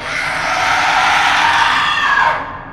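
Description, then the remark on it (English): A single loud, piercing shriek from a giant bat overhead, harsh and high-pitched, holds steady for a couple of seconds before trailing away, with no voices present. “he heard a sharp, ear-piercing shriek above him.”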